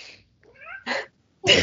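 cat vocalizing

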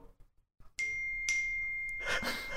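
phone notification chime

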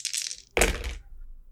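dice being rolled

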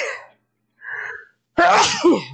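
sneeze

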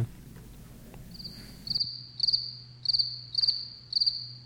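cricket chirping

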